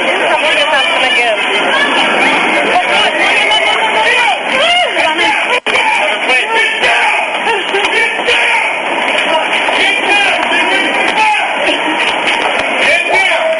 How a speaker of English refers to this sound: As you can hear that yelling, that is the police officers telling everyone to get down. At the moment when Tower 1 collapsed, smoke began billowing up Broadway.